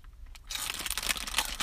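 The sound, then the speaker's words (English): Crunchy chewing of Cheetos mixed with crinkling of the plastic bag, a dense, bright rustle that starts after a brief quiet moment and continues steadily with irregular sharp crackles. “Can you pick up my Cheeto eating noises from here?”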